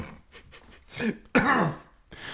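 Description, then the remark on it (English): A person clears their throat with a few rough, raspy rumbles, then lets out one loud, harsh cough before a short pause and a faint breath. “We ain't got cough buttons yet.”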